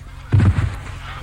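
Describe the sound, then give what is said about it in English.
A Canada goose lets out one or two short, loud honks, a brassy, nasal burst that cuts off quickly into a faint background hum. “Please add the following sound to my master tape labeled Sounds. Canadian geese”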